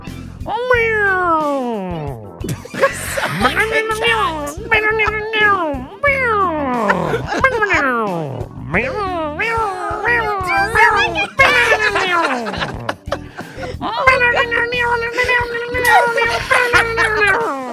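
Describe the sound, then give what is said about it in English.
A loud, drawn-out caterwauling performed by a human voice imitating a yowling cat, with long wavering cries sliding up and down in pitch, repeated nearly nonstop for about eighteen seconds. “Someone help that cat.”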